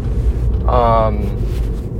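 A 2015 Mini Cooper S with a manual gearbox runs with a steady low engine rumble, and a brief higher tonal whine rises over it for about half a second midway through.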